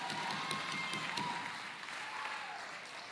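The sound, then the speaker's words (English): A church audience claps steadily for about three seconds during an evening sermon, a dense, even patter of many hands with no single claps standing out, scattered faint voices murmuring underneath. “Some of y'all clapping and you're guilty. I thank you for clapping.”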